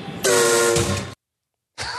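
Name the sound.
train whistle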